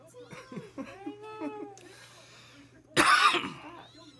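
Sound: coughing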